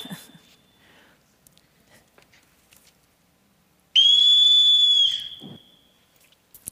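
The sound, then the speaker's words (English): A single loud, shrill whistle blast lasting just over a second, blown to summon children, sliding slightly down in pitch as it trails off. Faint rustling comes before and after it, and no one speaks. “And so as I think about what a law image for me might look like, for me it looks a lot like Captain von Trapp whistling for his children.”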